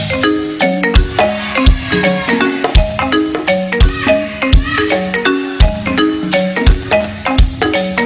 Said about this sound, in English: Can I just get the bell? Let me just get the bell.